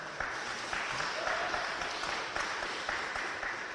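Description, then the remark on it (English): A crowd on the uppermost floors of the old State House in downtown Hartford claps steadily for several seconds, a dense, even wash of applause with a few scattered louder hand claps rising out of it. “Clap if you think that we're getting screwed and having to pay for this war.”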